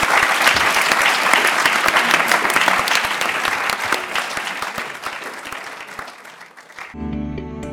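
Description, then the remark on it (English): Sustained crowd applause for a panel of respondents at a Royal Academy event, dense and steady clapping that slowly thins and fades over several seconds, then cuts off abruptly into a brief tonal musical sting. “Now, give a big applause to our panel of respondents.”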